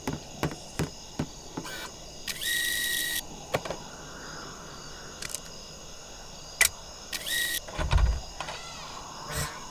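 A door unlocking mechanism clicks and ticks, broken by two short, bright mechanical whirs like a motorized latch, with a dull low thump near the end. No one speaks.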